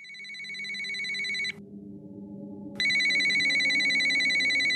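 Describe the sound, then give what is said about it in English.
A telephone rings twice in a film scene as the band gets on the phone with an executive at their record label, each ring a steady electronic trill lasting over a second with a short silent gap between, loud over a low background hum. “At one point in the film, … get on the phone with one of the suits at the label, a guy named Geoff Fenster.”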